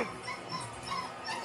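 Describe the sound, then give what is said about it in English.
Several dogs whimper and yip together in a steady, overlapping chorus of high whines and short cries, moderately loud, with no one talking, at a Super Bowl party. “Dogs.”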